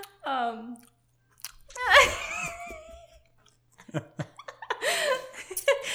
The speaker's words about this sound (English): And you had to put it in your mouth as you're talking. It's not like you even just waited for me to talk and then chew it. Why don't you go ahead and talk and I'll just chew.